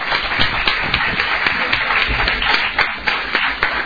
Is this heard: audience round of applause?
yes